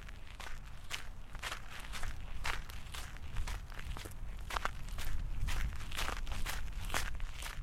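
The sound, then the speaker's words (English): Steady footsteps walk outdoors at an even pace, about two crisp, scuffing steps per second, over a low background rumble with no one speaking. “I'm hoping that once I step out for a walk, I'll feel differently about that.”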